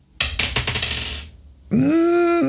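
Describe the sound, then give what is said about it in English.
A quick clatter of dice tumbling across a hard tabletop as a player rerolls a failed fitness check in a tabletop game, several rapid rattling knocks over about a second, followed after a short pause by a sustained, tonal vocal groan. “I will attempt a reroll.”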